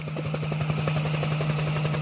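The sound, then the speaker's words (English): A helicopter filming a driver jumping a rising drawbridge in Daytona Beach thumps steadily, its rotor blades chopping in a fast, even rhythm over a constant droning engine hum, loud and unbroken throughout. “From the helicopter, Burrito.”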